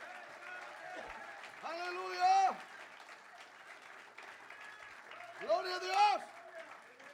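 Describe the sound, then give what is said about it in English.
A church audience claps steadily in praise to the Lord in a dense, continuous patter during a bilingual Spanish-English service, while loud voices shout and cheer in two bursts over the applause. “Vamos al aplauso al Señor. Clap your hands unto the Lord.”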